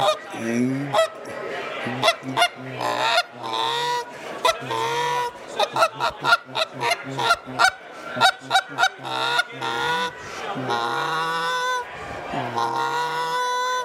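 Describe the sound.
A goose call blown loud, a steady run of short honking clucks mixed with longer drawn-out moans, repeating rhythmically for over ten seconds with no other sounds.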